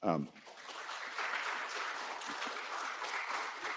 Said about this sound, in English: Y'all keep clapping. Us politicians just keep talking.